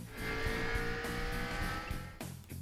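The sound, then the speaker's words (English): A race car engine roars loud, revving steadily for a few seconds before a brief dip near the end, with no voices. “Gentlemen, start your engines. Kyle, floor it.”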